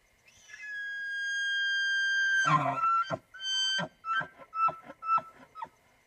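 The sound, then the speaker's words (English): An elk bugles: a high, rising whistle held for about two seconds, then breaking into a series of short, rhythmic grunting chuckles. No voices are heard. “So whenever you're listening to this episode, you can expect to hear the sound of an elk right about now.”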